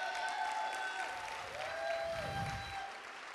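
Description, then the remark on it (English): An audience applauds the tech people in the booth in a dense, steady wash of clapping that holds at an even loudness for several seconds, with a faint sustained tone lingering underneath. “So I want to say there's a lot of people who always get our applause and stuff like that, but I want to take a specific time to, like, can we say thank you to the tech people in the booth back there?”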